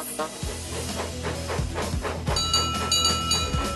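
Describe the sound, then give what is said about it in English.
A steam engine coupled to a coach chuffs slowly and steadily as it puffs out of a siding, with evenly spaced puffs and low rumbling thumps; a thin, high mechanical whine rises partway through. No voices are heard. “So Duck coupled up to Hannah. Oh, can we go fast? Children love going fast! And they puffed slowly out of the siding.”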